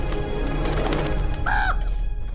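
A pet bird gives one short, clear, whistled call that rises and bends, standing out over a steady background hum and rustle, with no talking.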